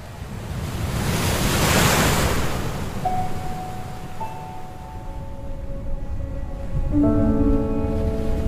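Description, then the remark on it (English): Ocean waves roll in with a broad, hissing wash that swells and recedes, joined partway through by soft sustained tones layered over the steady surf. “the brilliant blue and green hues of water, the serenity of the sound of rolling waves, the excitement of spotting a fish or other small creature, and the shimmering glaze of the setting sun cast upon horizons never fails to draw us in.”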